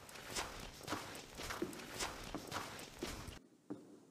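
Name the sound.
footsteps walking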